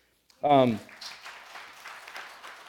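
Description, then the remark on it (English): A short loud vocal whoop gives way to a steady patter of applause from a sizable church audience, moderately loud and continuing to the end, with faint voices mixed in. “Hold your applause till the end.”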